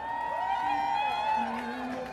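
crowd, crowd cheering

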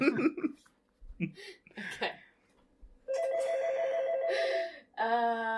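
signal or alarm, telephone ringing

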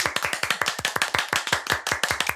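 crowd, hands clapping

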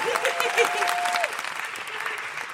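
crowd, audience applause

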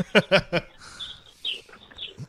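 bird, birds chirping

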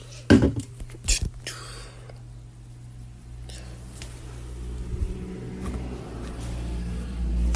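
vehicle, truck driving by outside

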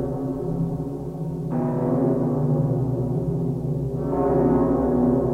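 signal or alarm, church bell ringing

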